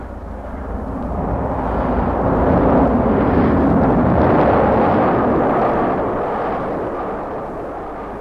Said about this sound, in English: Nuneaton, Litchfield, Rugeley, the sound of the road, the echo of the passing train, and the signals all tell the driver where the Irish Mail is.